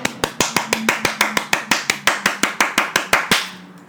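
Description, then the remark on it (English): Steady, evenly paced hand claps, around eighteen sharp slaps in quick succession, fairly loud, with no talking, ending with a brief fading tail. “Clap it up for yourselves, ladies and gentlemen.”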